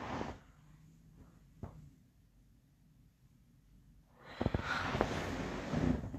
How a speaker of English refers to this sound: Yeah, sorry, I'm not trying to be rude or anything, but these yawns keep creeping up on me.